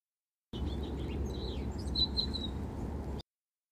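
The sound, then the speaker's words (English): A house finch, recorded in the wild, sings a quick, warbling run of high chirps and slurred notes for a few seconds, over a steady low rumble of outdoor background noise. “House Finch: Spotlight Bird”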